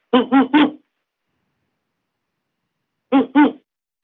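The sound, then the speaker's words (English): A person vocally imitates a deep, gorilla-like call heard from a knoll about 500 to 700 yards away: three quick, throaty hoots, a long silent pause, then two more, fairly loud with nothing else around them. “It sounded like a gorilla.”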